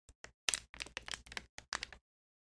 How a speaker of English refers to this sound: I moved my water bottle and it sounded amazing with the ASMR.